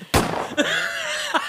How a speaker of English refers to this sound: That gunshot is fucking trash. I'm about to switch that to the siren.